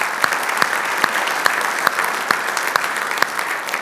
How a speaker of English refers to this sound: So I just want to first, before I get into this, thank everybody that helped out the food giveaway yesterday. If you could just give them a round of applause.